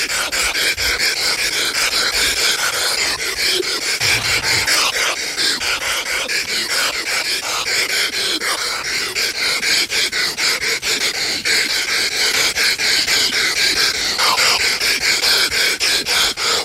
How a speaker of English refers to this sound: Oh, yeah. So we got to do Hulk Hogan breathing. And Hulk Hogan breathing...